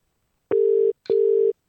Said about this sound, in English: Let's call it. It's ringing. Is he gonna answer?